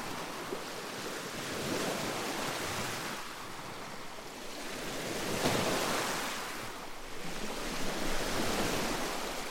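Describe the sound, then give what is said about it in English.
Heavy ocean surf roars continuously, with waves over 10 feet high swelling and crashing every few seconds in a dense, hissing wash. Wind rushes steadily underneath, and no one speaks. “And now the waves are way over 10 feet. They're crashing.”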